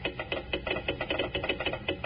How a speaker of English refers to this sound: Look what I got. A real honest-to-goodness telegraph set. Listen.